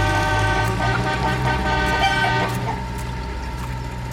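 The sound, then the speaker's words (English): A tractor pulling a trailer rumbles past while its horn blares in a long, steady, loud tone, easing off slightly toward the end. No one speaks. “That definitely looked like Chicken heading off with the tractor and trailer.”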